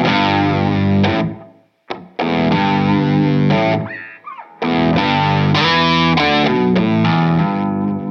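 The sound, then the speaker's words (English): A heavily distorted electric guitar with a low octave effect adds a growling, gritty bottom end as it plays loud riffs, with brief pauses between phrases and no one speaking. “It's got that sort of low growl that they like for their stuff, you know? Yeah. With the octave on it and kind of that trashy PV amp sort of sound.”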